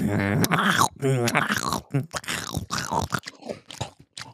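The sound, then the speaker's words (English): Crunchy, wet chewing into a microphone with irregular bites and smacks, mixed with mumbled voiced sounds, growing more crackly and broken toward the end. “Yo, let me know if I need to mute my mic when I'm chewing.”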